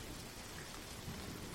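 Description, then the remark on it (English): Heavy rain from a summer storm pours down on Buchanan Street in a steady, dense hiss with a low rumbling undertone, continuous and fairly soft throughout, with no voices. “Summer Storm”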